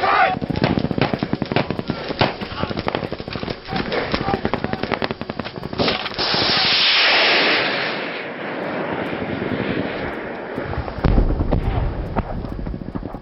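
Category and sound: impact, gunfire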